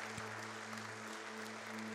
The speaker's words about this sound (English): Can we give them a round of applause and just appreciation?